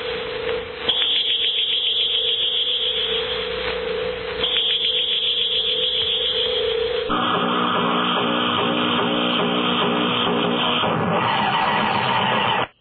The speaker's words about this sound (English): I just remember seeing that as a kid when that heat ray fired out and was killing people